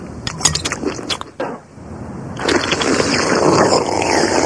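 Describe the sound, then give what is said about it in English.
Loud, wet slurping of soup at a family dinner: a few short, noisy sucking bursts at first, then one long, continuous slurp that holds steady to the end. “There's no need to slurp your soup so loudly.”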